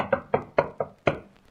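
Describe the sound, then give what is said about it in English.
Five firm knocks on a chamber door in a quick, slightly uneven rhythm, clear with no voices, the last rap coming after a brief pause. “That is, until I heard a rap-tap-tap on my chamber door.”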